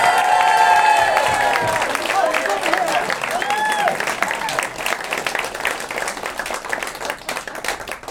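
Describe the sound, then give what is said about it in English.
An audience bursts into steady, dense applause with whoops and cheers, welcoming the person who will take on the roles of the non-player characters, the clapping loud at first and tapering slightly over about eight seconds. “So, please, a big round of applause for our NPC, our non-player”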